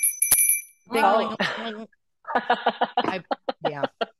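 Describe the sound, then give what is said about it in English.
A cowbell rings out with a bright metallic clang that hangs for under a second, then people chuckle and talk over one another. “I have a cowbell.”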